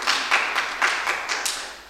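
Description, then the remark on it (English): An audience claps together in a quick, fairly steady rhythm, bright sharp smacks blending into a moderately loud burst of applause with no voices over it. “Can I have a clap?”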